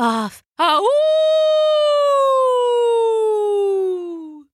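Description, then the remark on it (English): A human voice imitates a wolf howl: a short yelp, a brief pause, then one loud, sustained, tonal howl that swoops up and slowly glides downward in pitch for several seconds before trailing off. “He threw his head back and let out his loudest howl yet.”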